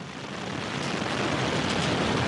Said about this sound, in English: 5, 4, 3, 2, 1. We have engine ignition. Engine start and liftoff. The SS Kulpna Chawla takes flight, sights set on the International Space Station.